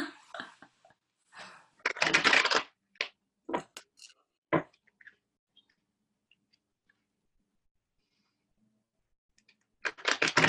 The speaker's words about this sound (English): So I'm going to shuffle six times as a nod to numerology.